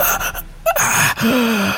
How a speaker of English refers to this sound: Barely speak, barely see as he crawled on the floor, panting, as if through broken ribs, he looked around.